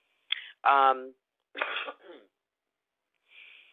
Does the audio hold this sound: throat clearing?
yes